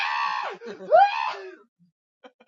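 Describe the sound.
A person imitates the Shia LaBeouf scream: a strained, wailing cry that dips and swells in pitch for about a second and a half, then cuts to near silence with a few faint clicks.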